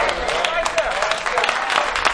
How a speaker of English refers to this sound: Don't clap at that.